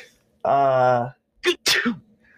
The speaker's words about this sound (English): That's me sneezing because there's Mexicans around and they're smelling.